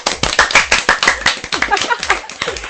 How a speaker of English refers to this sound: Immense clap right there.